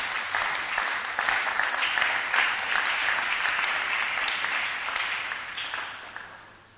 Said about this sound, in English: Clap for Jesus.